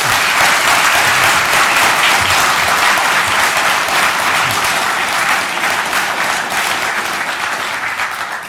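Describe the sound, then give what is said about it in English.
Loud, sustained applause from a large audience of Christian and Muslim communities welcoming a guest speaker, a dense wash of clapping that holds steady for several seconds and eases slightly toward the end, with no voices standing out. “That's better than Thank the applause I get.”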